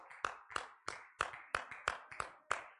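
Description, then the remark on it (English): An audience claps in steady unison, giving the Lord a clap of praise as they return to their seats, about nine sharp, crisp claps at an even brisk tempo, each a bright percussive burst with a short ringing tail, and no voices. “Let's give the Lord a hand and clap of praise as we make our way back to our seats.”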